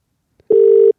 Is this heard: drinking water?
no